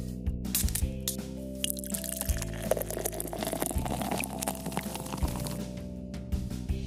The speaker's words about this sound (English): Feel the cool, crisp lager cascade into your glass and savor the perfect blend of hops, malt, and vaginal yeast that dances on your palate, leaving a smooth, slightly fishy finish that's pure bliss.